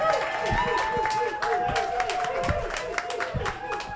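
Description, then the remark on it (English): A crowd claps steadily for several seconds to welcome a guest on a show, a dense patter of overlapping hand claps, with voices chattering and calling out underneath. “But first, let us welcome, with clapping of hands”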